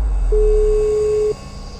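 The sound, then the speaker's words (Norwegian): A single steady telephone tone sounds for about a second as a school principal calls a teacher, clear and fairly loud over a low background hum, then cuts off abruptly. “så slipper du å få høye skuldre når rektor ringer deg I det du skal på ferie, og sier den skumleste sammensetningen av ord som finnes, nemlig «Det har kommet inn en klage».”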